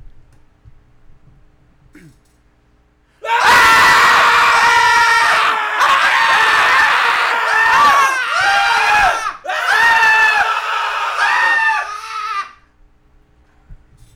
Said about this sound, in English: Should we do a real scream just to cleanse the palate? Sure. Okay. Move the mics away, though.